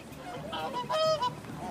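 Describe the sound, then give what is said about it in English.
A trumpeter swan calls with a short series of nasal, horn-like honks, rich in harmonics, rising to a louder middle call before one last brief note, with no voices over it. “Can we hear that and trumpeter otherwise. Swan call one more time and then a walk-off?”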